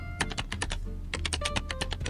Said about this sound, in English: Right here is the slow keyboard sound. So you'll hear that in the contacts thing. Pad 5 loaded with keyboard typing, slow sound.